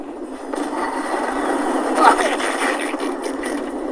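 A helicopter's steady, droning engine roar fills the whole stretch, a dense mid-pitched rumble that swells slightly toward the middle and stays loud and continuous throughout.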